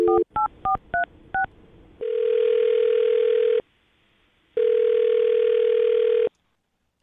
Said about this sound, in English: Well, I'm going to dial her phone number right now, see if we can get her on the phone and find out what happened, okay?